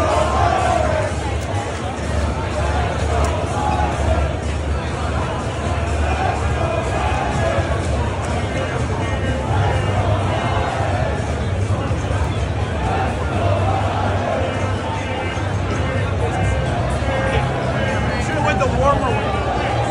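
Dense crowd chatter from a packed stadium concourse at a home playoff game, a steady, loud wash of overlapping voices and babble with no single speaker standing out, continuous for the whole stretch.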